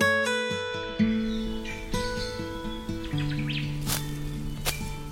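Forest birds chirp and squawk in quick, scattered bursts over a steady bed of sustained musical tones, with a couple of sharp rustling snaps near the end.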